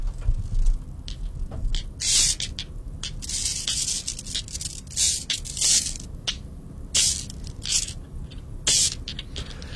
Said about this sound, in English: Marbles. Yes, you nailed that one. I think that's an iconic sound, especially when you're a kid, hey? Yeah, you just hear those glass marbles clacking together, and you're not going to mistake it for too much else.